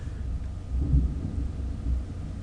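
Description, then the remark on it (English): Low, rumbling thunder rolls through, swelling in a couple of deep surges before settling into a steady background growl. No one speaks. “I'm sorry, it was thunder.”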